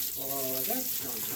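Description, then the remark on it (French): Steady hiss of running shower water, fairly loud, continuing throughout, with a brief voiced tonal sound rising over it near the start. “Bien sûr, il doit aussi prendre une douche de temps à autre.”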